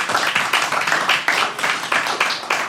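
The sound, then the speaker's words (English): A short round of applause: steady, rhythmic clapping from a small group, bright and crisp, keeping an even pace for about three seconds with no talking over it. “Give a round of applause to everybody.”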